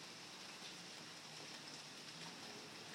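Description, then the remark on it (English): Steady rain falls on a porch at night, 8:52 on a Saturday, in a continuous, even hiss, with soft patter spread across the whole stretch and no voices present. “And we get the sounds of rain.”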